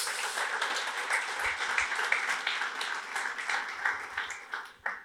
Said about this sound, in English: So thanks to those guys. Quick round of applause for them.